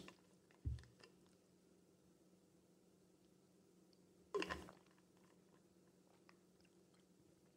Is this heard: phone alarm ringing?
no